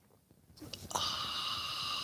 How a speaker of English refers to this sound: So join me now for the unparalleled pleasure, the dopamine hit of the day, the thing that makes everything better. It's called the simultaneous sip. Go.